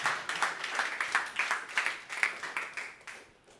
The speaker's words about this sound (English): Come on now, give God a clap.